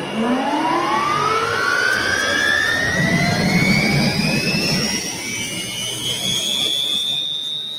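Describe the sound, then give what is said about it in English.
A T-55 helicopter turbine engine, as used in Chinook helicopters and rated at about 4,500 horsepower, spools up with a loud, steady roar and rising whine that climbs in pitch over several seconds, continuous with no voices. “Now, this is a T-55, correct?”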